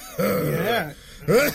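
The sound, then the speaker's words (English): A voice imitates an old man's hacking cough, like those heard on a bus: a long, groaning, throaty burst, a short pause, then a second shorter rasp, fairly loud with no words. “Like, you know those old man coughs that you're on the bus, like...”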